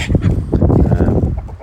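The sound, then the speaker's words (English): Agitated chicken clucks and squawks overlap in a busy, continuous flurry, loud, as a cockerel chases a hen trying to mate with it while another hen chases and pecks that hen, with no clear rhythm. “And as he's doing so, another hen is also chasing that chicken and really pecking it and having a go at it.”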